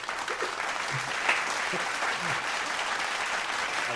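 A crowd applauds steadily for about four seconds, a dense, even wash of many hands clapping at a constant, moderate loudness, with faint low murmurs and a stray voice or two beneath.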